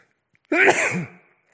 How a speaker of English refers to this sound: I'm going to sneeze.